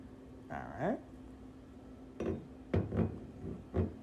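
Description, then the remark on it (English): Glass bottles and a shot glass clink and knock as someone rummages for a bottle of whiskey and a shot glass, a few separate clatters spaced irregularly, preceded by a brief rising squeak. “This one, I'm not going to take it out of the glass, but I'm getting a shot glass right now, guys, so.”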